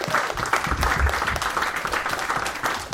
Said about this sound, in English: Give her a warm round of applause.